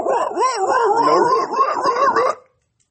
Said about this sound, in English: Yep, exactly. Oh, that's yeah, the dog started barking.